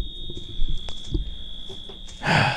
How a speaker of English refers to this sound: My wife just texted me. She said, I can hear the alarm on the radio. Well, yeah. It's right there.